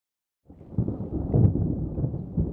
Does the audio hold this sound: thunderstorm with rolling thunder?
yes